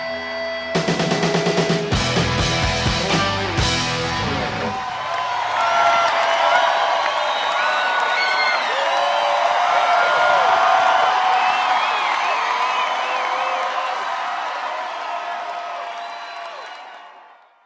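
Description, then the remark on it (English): A short burst of loud live band music cuts off at the end of a concert, then a large crowd roars with cheering, applause and high whoops, sustained for over ten seconds before tapering off. “That's a lot of cheering there.”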